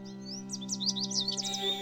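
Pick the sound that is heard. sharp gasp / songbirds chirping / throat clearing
songbirds chirping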